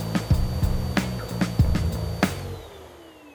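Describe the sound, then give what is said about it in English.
A vacuum cleaner motor roars with a steady high whine and intermittent clattering knocks, then spins down, its pitch sliding lower as it fades toward silence. “The idea with the vacuum cleaner”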